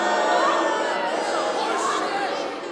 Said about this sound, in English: I understand why you're booing, but I'm not making excuses for myself.